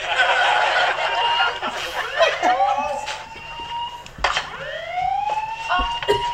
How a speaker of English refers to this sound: Well, that's coming from the Creedmoors. It must be their stupid house alarm.